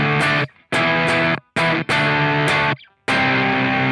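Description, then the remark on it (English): Loud electric guitar chords run through an effects pedal set to about a halfway blend, with a gritty, partly processed tone, played in five chopped bursts separated by brief silences, with no talking. “So like a halfway blend, you know.”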